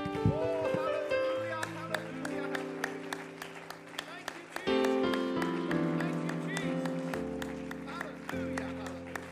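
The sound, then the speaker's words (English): An audience at a church service claps in praise of Jesus, a loud, dense, steady patter of hand claps layered over sustained keyboard chords that shift every few seconds, with voices mixed in underneath. “Let's give him one more hand clap of praise.”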